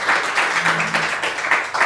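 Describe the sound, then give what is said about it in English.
A short burst of applause from a group, dense overlapping claps forming a steady, fairly loud patter with slight swells, and no voices standing out. “What a great thing to have done this summer for us to follow, and we applaud you.”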